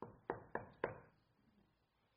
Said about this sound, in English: He's been told, so he knocks.